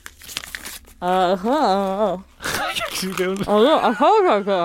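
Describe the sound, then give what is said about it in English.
Paper being shredded crinkles and rips in a short burst of dry, scratchy rustling, then a voice with a wavering, drawn-out pitch takes over, with another brief tearing rustle in between. “Yeah, so I'm gonna shred them.”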